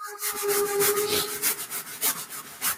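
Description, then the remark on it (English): A steam train chugs along in a steady run of breathy, rasping chuffs, with a sustained mid-pitched tone ringing through the first second. No one speaks. “Yeah, it's a train, folks. It is a steam train.”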